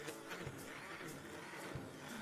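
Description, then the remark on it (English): A blender whirs steadily as it mixes cupcake batter made from cupcake mix, eggs, whole milk and oil, a dense, constant motor hum with faint rhythmic pulses repeating about every half second, with no voices. “Then I blend it up.”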